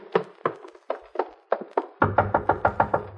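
knocking on a door

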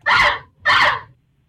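parrot vocalizing

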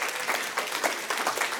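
audience applause and cheering

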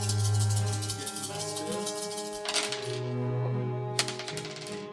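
dice being rolled

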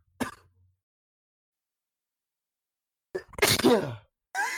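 sneeze

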